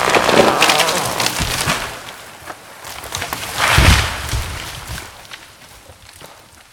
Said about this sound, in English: "Timber!" they yelled. I looked up and saw a giant oak falling right on top of us.